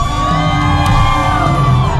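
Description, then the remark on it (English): A large crowd of Israelites at Jericho shouts and yells together at full volume after hearing the sound of ram's horns, a dense, sustained roar of many raised voices without a break. “when the people heard the sound of the ram's horns, they shouted as loud as they could.”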